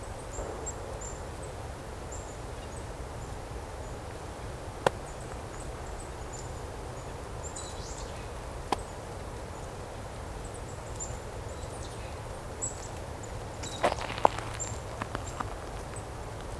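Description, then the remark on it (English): Sparse, irregular rustles and crisp clicks of birds foraging, flipping over dead leaves and picking at things, with a small flurry near the end, over a steady hiss and faint high bird chirps. “You can kind of hear all the birds foraging a bit, flipping over leaves, picking at things, picking at dead leaves.”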